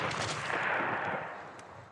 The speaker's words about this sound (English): Be prepared for the gunshot.